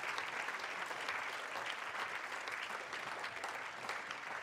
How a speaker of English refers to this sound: A round of applause rose again through the room.